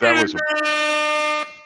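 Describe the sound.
A brief burst of voice gives way to a single loud, sustained air horn blast lasting about a second, a steady brassy tone that cuts off abruptly.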